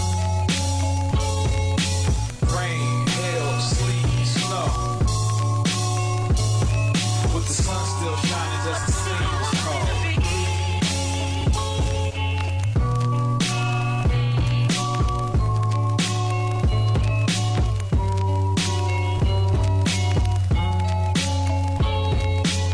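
A hip-hop track plays loudly and steadily, with a heavy, deep bassline under crisp, regular drum hits and layered melodic samples looping throughout, with no one talking over it.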